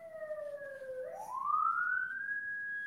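signal or alarm, police siren sound effect

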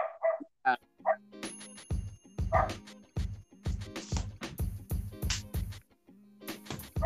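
animal, dog barking and whimpering

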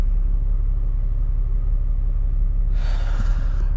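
vehicle, car interior engine rumble

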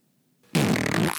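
human body sound, loud fart

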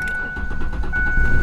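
vehicle, car engine starting

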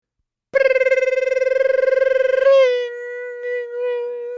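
signal or alarm, school bell ringing

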